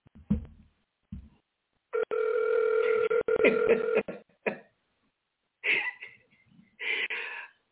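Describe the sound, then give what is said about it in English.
An outgoing phone call rings through a handset speaker: one long steady ringback tone, then two shorter tonal bursts after pauses. A few short coughs or throat sounds come just before it. “Now I'm going to call her because she keeps calling me.”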